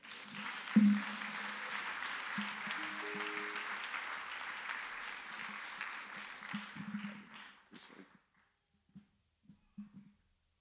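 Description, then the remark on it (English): A church audience claps steadily for about eight seconds in praise of the brothers who served them, a dense wash of applause that tapers off into a few scattered final claps and then quiet. “Y'all give a hand clap of praise for my brothers, our brothers, for serving us.”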